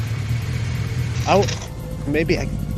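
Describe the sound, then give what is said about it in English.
A flying motorcycle's engine rumbles steadily, its pitch climbing in two short revving bursts about a second apart before settling back to a low drone. “Oh, flying motorcycles.”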